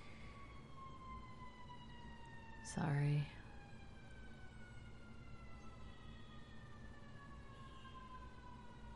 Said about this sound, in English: Can't tell how much of that siren is coming through the monitor or how much I'm actually just hearing outside of my ears.